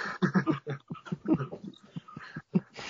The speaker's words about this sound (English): Freaking dog.